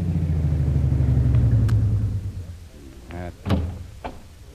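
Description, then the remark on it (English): The engine of a long, powerful car rumbles low in the winding streets of Singapore's waterfront, then winds down and falls quiet as the car comes to a stop, followed by a couple of sharp, door-like clunks. “An hour or two later, a long, powerful car twists its way through the winding streets of Singapore's waterfront.”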